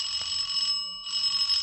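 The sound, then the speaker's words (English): A doorbell rings with a steady, buzzing electric tone that holds for nearly two seconds, briefly dipping midway before continuing, fairly loud, with no voices. “Answer the door, will you please”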